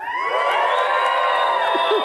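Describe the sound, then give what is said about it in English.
An audience cheers loudly, many voices blending into a dense, steady roar with high whoops and shouts rising above it, sustained for about two seconds. “Let me hear you cheer one more time.”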